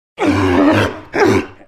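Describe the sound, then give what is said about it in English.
A sea lion gives two loud, hoarse barking roars, the first long and drawn out, the second shorter after a brief pause, clear with no talking. “So, what's that sound? A sea lion!”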